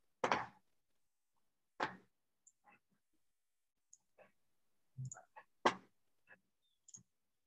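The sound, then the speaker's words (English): A computer mouse clicking while a Dropbox Paper document is being opened, about a dozen short, sharp clicks in an uneven rhythm, some single and some in quick clusters, with quiet gaps between and no talking. “I clicked on the thing that actually had the recording from.”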